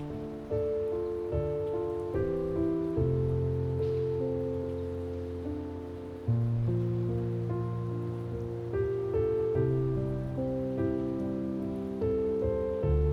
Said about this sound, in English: The morning rain is here to ease you into comfort. So let go, my love. And be present here with her gifts.